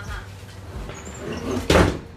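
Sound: door being closed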